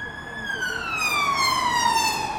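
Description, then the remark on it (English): An undercover police car's siren wails loudly as it passes by outside a Sainsbury's supermarket in a town, its steady tone sliding gradually lower in pitch as the vehicle moves away. “Well, these aren't the sounds I associate with this lovely town, are you? No, and that was an undercover one.”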